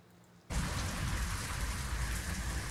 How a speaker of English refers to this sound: He's got one of those, like, rain sticks back there.